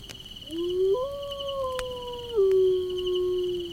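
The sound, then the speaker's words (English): A hungry wolf's long, mournful howl rises, holds and then slides gently downward, swelling briefly before trailing off, heard clearly and alone against a faint steady background hum. “The wolves are hungry and I'm out of patience.”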